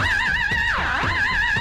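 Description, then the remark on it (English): A voice imitates a horse whinny: a loud, high, warbling tone that dips down and swoops back up, held for about a second and a half with no other talk. “Current one is, you know, … by …? Yes. Yeah. What do you sing? You know, when it goes.”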